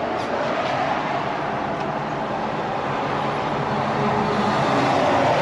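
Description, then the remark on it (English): A car engine rumbles steadily with broad road noise, growing slightly louder toward the end as someone pulls up in their car. No one speaks. “I thought somebody pulled up in their car.”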